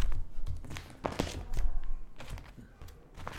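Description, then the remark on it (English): Pages of a songbook are turned, giving several crisp papery swishes and rustles with soft thumps in between, fairly quiet and irregular, with no one speaking. “You can hear me turning pages.”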